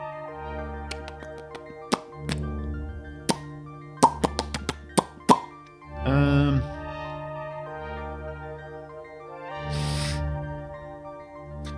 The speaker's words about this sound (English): And he's going to sit up and like splash his hands in the water a little bit and get up.